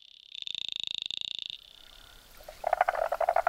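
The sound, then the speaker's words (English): A bilingual froglet, from a collection of frog calls recorded around Australia, calls in two styles: first a fast, buzzing rattle of rapid pulses for over a second, then a series of sharper, louder chirping pips. Clear, with no voices. “Here is the bilingual froglet.”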